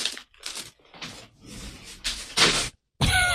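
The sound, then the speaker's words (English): Crinkly plastic cough drop packaging rustling in several short bursts as it is put away, bright and papery with crackling texture, stopping briefly before a final burst of crinkling. “I have cough drops, and I just had to... I was putting them away.”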